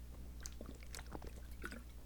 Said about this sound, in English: All right, I just took a drink of water. All right, that should be all right.